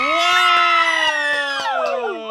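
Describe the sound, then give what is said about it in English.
A loud, excited yell held for a couple of seconds, piercing, its pitch drifting slowly downward as it trails off near the end. “Oh, I'm so sorry. I yelled so loud.”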